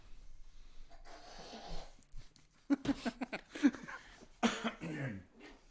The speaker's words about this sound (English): Excuse the coughs.